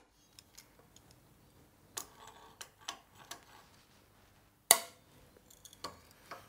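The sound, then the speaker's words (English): A clamp is fitted and tightened onto a steel angle to hold it in place for drilling: a run of sharp, irregular metallic clicks and taps, with one loud clack midway, and no talking. “Then I'm going to just drop the drill for a sec and make sure that the angle doesn't move while I grab my trusty clamp.”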